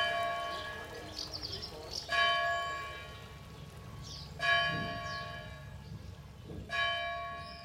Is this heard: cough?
no